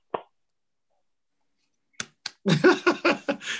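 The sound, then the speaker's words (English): A single sharp clap, then a brief pause before two more claps and a short burst of quick, rhythmic hand clapping, moderately loud, with no talking. “Don't clap for me.”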